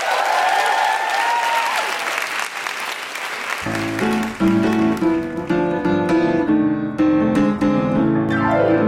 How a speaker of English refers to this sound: But you're all wonderful. Big round of applause for everyone dressed up.